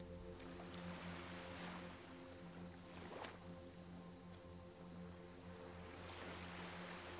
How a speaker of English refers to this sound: But today, the watery world here is quiet and lovely, with a slight breeze and soft ripples on the surface of the sea.